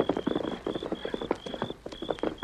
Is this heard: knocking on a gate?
no